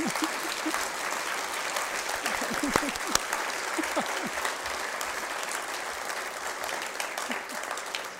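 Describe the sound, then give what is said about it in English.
An audience applauds steadily for about eight seconds at an evening talk on the First Amendment, before the Q&A, a dense, even wash of clapping hands at constant loudness, with a few brief murmurs of voices mixed in. “Let's get some applause.”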